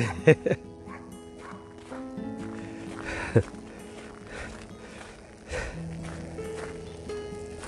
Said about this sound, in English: That was their little white poodle. A good old bark at Rooney. Rooney ignored him. Totally unfazed, weren't you, Runes, by that?